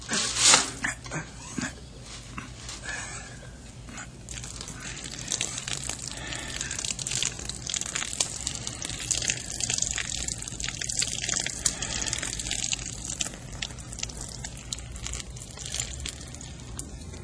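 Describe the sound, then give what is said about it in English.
Liquid pours steadily from a can that is slowly tipped to keep the pouring rate continuous, a long continuous trickling splash with small gurgles and drips throughout until the can is empty, and no voices. “Just enough so I can tip it freely to keep the pouring rate continuous.”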